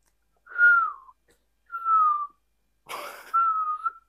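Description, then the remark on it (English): A person whistles a few clear, sustained notes in separate phrases, each gliding slightly downward, with short pauses between. The whistling is fairly loud, with no talking. “I just made the thing so I couldn't actually whistle it.”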